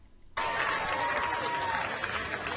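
A large outdoor crowd at the Nathan's Famous hot dog eating contest at Coney Island, Brooklyn, breaks into sudden, loud applause as the winner is announced, a dense steady wash of clapping with faint cheering mixed in.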